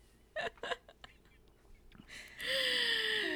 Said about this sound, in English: I'm yawning.